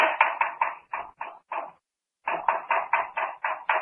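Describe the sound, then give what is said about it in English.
Rapid, evenly spaced knocking on a cabin wall aboard the Arrow, a burst of about seven raps, a brief silence, then another run of seven, fairly loud with no voices. “That knocking, almost as if someone were trying to signal.”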